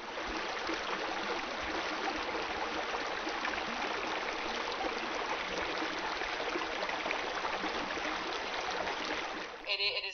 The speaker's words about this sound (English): Peaceful, and you know, I suppose on the water you're not going to bring your phone either, so it's just a nice way to get away from your phone, I think, as well, and just, you know, chill out with nature and just the sound of the water, you know.